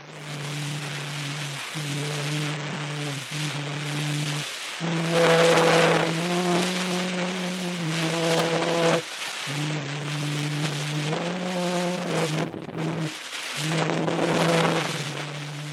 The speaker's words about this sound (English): It's only with modern optical techniques that the sound waves stored on the drum can now be heard. Here is the first sound recording ever made.